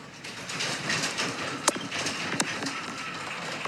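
A steady, noisy rumble of an earthquake runs throughout, felt inside an apartment, broken by two sharp, loud booms of the doors banging about a second apart. No one speaks.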